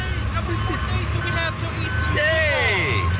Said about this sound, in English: turn that fat truck down. Please.